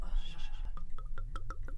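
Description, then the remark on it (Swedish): Wine from a 2016 bottle of Reserven glugs out in a quick, even rhythm of about six hollow gurgles, each with a bubbling pitch sweep, following a brief murky rustle at the start. “Och nu har jag fått tag på en flaska av Reserven”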